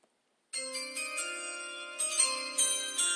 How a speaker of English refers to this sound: I had to play it again. I want y'all to hear the chime.